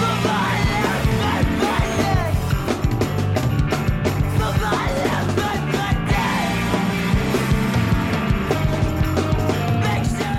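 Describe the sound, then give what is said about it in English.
A loud, dense rock song with a male vocalist screaming intensely over pounding drums and heavy guitars, the strained cries continuing throughout at full volume. “It's just like, this guy's voice, whoever it is, is... just I feel like the way he screams is extremely emotional.”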